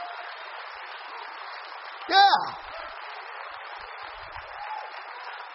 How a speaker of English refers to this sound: Somebody ought to give the Lord a hand clap of praise.